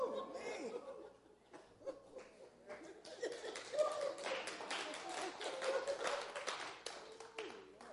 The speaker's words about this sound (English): You guys are applauding that. Wow, that's weird. That's strange. Not sure why you're applauding.